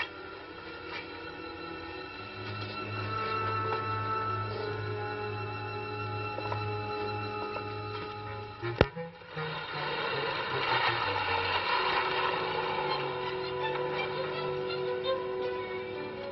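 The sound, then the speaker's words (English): The jeep Nellie Bell's engine runs with a steady, rumbling drone, then lets out a single sharp, loud backfire bang midway before it keeps idling and revving unevenly. The jeep is made to backfire on purpose after being backed down a street. “Can you get Nellie Bell to backfire?”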